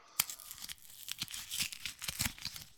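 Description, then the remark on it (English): Dry leaves being crumpled and crushed by hand, a dense run of sharp, crackling crunches and rustles with a few louder snaps, continuing steadily throughout with no voices. “Yeah, last week's was crunchy leaves. Autumn right, leaves. Go and play the sounds here. Crunched up in somebody's hand.”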